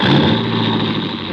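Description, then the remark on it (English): A car engine roars loudly, a dense steady rumble that sounds like it is revving hard as the vehicle, a stolen coupe, pulls away. No voices. “And it took 10 minutes of steady concentration to get it through my throbbing head that Adrian had actually stolen my car and was gone.”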